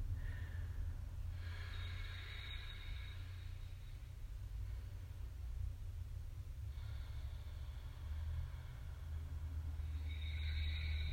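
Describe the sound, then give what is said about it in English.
Slow, deep breaths drawn in and let out in long, steady cycles, a few seconds each, during a yoga session, over a constant low rumble of background noise, with no talking. “Just another moment breathing.”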